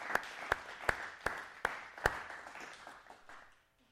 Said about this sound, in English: If you believe Jesus is the only way, would you give the Lord a hand clap today?